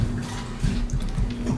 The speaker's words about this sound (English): Excuse me while I drink water.